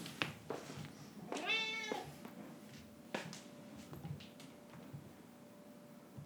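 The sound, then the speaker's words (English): A single drawn-out cat meow, clear, with a rising harmonic-rich tone lasting about half a second, followed by soft clicks and a faint steady hum. “Moose, what are you meowing at?”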